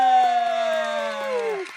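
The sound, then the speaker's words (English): A single voice lets out a long, sliding cheer that drops in pitch, imitating a studio crowd going wild for a winner on the show BB on Blast, with faint clap-like ticks underneath for almost two seconds. “what must it mean to you to hear this crowd going wild like this?”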